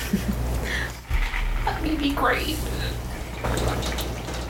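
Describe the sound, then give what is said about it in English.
Liquid is poured into a small shot glass, its pitch rising briefly as it fills, over a steady low hum with some faint murmuring around it. “gonna take the shot, and then we're gonna get into solo.”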